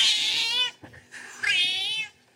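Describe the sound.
A cat lets out two long, drawn-out meows, the second rising and stretching a little longer after a brief pause, with no talking around them.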